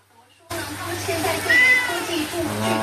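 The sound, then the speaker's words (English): A family's domestic cat meows after a brief quiet start as a 10-month-old boy reaches out to stroke it, its drawn-out cry rising over a steady background hum and faint household noise, with the small child's voice nearby. “A little 10-month-old boy reaches out to stroke the family cat.”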